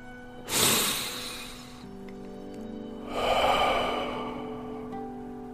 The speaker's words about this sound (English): Keep the steady rhythm on your breathing. Steady rhythm of breathing in through the nose and out from the mouth. Focus in on that.